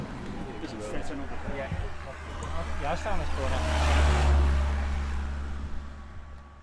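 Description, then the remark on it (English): Road traffic rumbles on a main road, with a vehicle swelling loudly as it passes and fading away, over a steady low engine drone; a voice is briefly heard underneath. “you're going to be coming out onto a main road”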